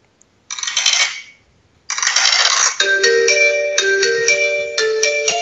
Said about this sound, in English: See if you remember this song